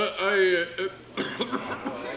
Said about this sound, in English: No, I'm sorry, I just coughed.